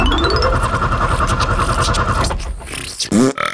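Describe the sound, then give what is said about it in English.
A truck engine, the chuckle truck, cranks and sputters with a rapid, grinding churn for about two seconds, then fails to start and dies away with a few rough coughs and scrapes. “Well, that is absolutely not a good sound. Can anybody think of what might be up with the chuckle truck?”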